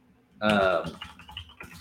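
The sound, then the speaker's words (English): A short burst of voice gives way to light, irregular clicking of typing on a computer keyboard, fairly soft, with quick taps scattered across a couple of seconds. “You can probably hear me typing.”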